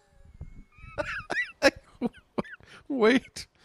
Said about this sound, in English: I'm coughing because I ingested so much fog machine fog.